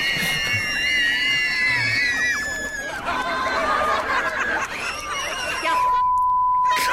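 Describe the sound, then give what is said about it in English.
A crowd of upset children shriek and scream together, loud and sustained, as a train passes with a rumbling noise, before the sound cuts to a steady electronic beep tone at the end. “And then the other train coming made them scream more.”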